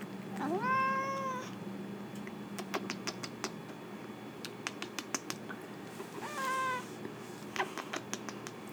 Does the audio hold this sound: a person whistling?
no